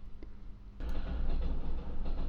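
A low, steady rumble swells in abruptly and keeps rolling, like a train passing close by, heavy and continuous with no voices over it.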